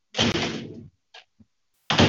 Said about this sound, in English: Shut the door.